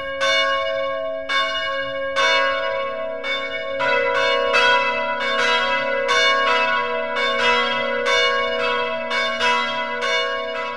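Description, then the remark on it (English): Church bells ring in a steady, overlapping peal, with a dozen or so bright strikes whose tones linger and blend over a sustained low hum. Loud, with no voices. “It's time for the bells.”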